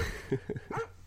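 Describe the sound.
A person imitates a dog barking with three quick voiced "woof"-like yaps in a short burst, loud, with no other talking.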